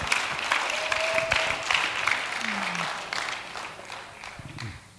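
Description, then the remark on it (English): A church audience claps in praise of the Lord in a steady, dense wash of overlapping handclaps, moderately loud throughout, with faint voices and a brief tonal murmur mixed underneath. “Give the Lord a clap off.”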